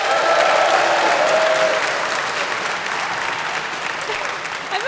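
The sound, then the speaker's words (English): An audience claps steadily for about five seconds in answer to a question about how many senators there are, a dense, even wash of applause that stays loud throughout, with a faint voice briefly audible underneath. “How many of you think you have between 100 and 150 senators?”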